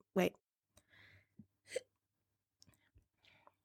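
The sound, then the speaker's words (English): A small, sharp hiccup bursts out near the start, followed by a few softer breathy sounds and faint murmurs in a quiet setting. “Oh, that was a cute little hiccup.”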